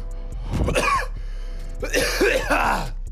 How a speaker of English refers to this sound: Cough you very much.